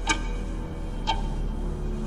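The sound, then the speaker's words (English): A large tower clock ticks slowly and steadily, three crisp, evenly spaced ticks about a second apart over a low, constant background rumble. “Scarecrow had tied Gordon to the clock face. In 5 minutes, the giant hand would crush him”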